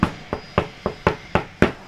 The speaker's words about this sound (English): He's interrupted by a knock at his door.